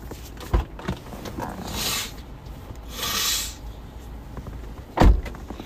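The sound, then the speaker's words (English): Two breathy, hissing nose blows, each lasting under a second, with a short pause between them. Sharp knocks sound at the start and near the end, and no one speaks. “God, I need to blow my nose.”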